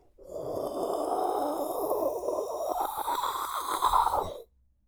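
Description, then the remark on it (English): A voice imitates a big gust of wind, a sustained breathy whooshing that swells and holds for about four seconds before cutting off, fairly loud. “But a big wind blew by.”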